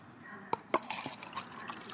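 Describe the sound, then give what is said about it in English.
A 12 o'clock milk-diet drink is poured: two sharp taps at the start, then a second of soft splashing, gurgling liquid that trails off. No voices are heard. “I have my 12 o'clock milk, which I didn't get a chance to drink yet.”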